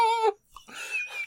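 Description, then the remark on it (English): A female dog wiggling about makes fussy noises: a short high whine, a brief click, then breathy snuffling grunts with a thin squeaky edge, all fairly quiet and with no talking. “I've got a wiggle dog here. You wiggle it all over the place.”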